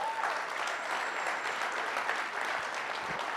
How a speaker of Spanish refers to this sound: Oye, yo creo que eso se merece un aplauso.